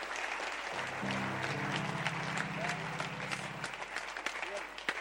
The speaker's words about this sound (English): This interpreter is too powerful. Please clap for the interpreter.